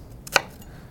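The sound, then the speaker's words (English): A knife chops a halved onion on a cutting board: one crisp chop, preceded by a lighter tap, with no talking and only quiet room tone. “You can just do, if you're doing chopping, you can just do this.”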